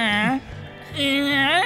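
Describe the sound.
A person mimics a cat's meow twice, two drawn-out, whiny vocal calls with a short pause between them; the second stretches longer and bends upward in pitch.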